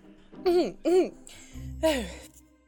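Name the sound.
sneeze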